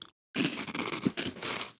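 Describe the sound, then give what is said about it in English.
Loud crunching of big nacho-flavored puffed snacks being chewed, a dense burst of brittle cracks and crackles lasting under two seconds after a brief silence, with no talking. “These are crunchy.”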